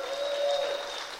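An audience in a church claps for Pastor Richie in a dense, steady burst of applause for just over a second, with a thin sustained tone riding over the first half before fading out.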